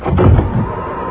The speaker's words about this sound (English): Yeah, there's no one there. I shut the door.